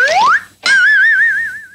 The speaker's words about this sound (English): It feels like a line delivered with a wink, wink. Maybe with a slide whistle.